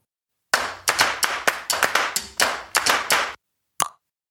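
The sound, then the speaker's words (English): A quick, steady run of about a dozen hand claps, sharp and fairly loud, then a brief pause and one last single clap. No one speaks. “Insert clapping hands emojis here.”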